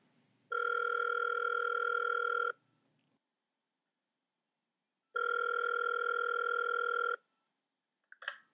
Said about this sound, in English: First things first, I need to make a landline phone call.